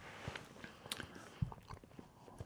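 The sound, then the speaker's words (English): Wet chewing with irregular crunchy bites and mouth clicks, several soft chomps spread over a couple of seconds with no talking. “I'm chewing too much, I apologize.”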